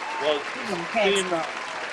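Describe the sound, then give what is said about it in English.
Steady applause from a crowd for Quincy Jones, a dense crackle of clapping with voices calling and cheering over it, swelling slightly at moments. “Everybody give Quincy Jones a round of applause.”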